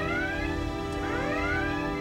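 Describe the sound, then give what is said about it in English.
A red alert klaxon aboard the starship Enterprise whoops in rising electronic tones, about once a second, loud and insistent over a steady low rumble, with no talking. “Red alert.”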